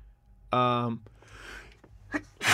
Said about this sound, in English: excuse me. How often do I sneeze on the show?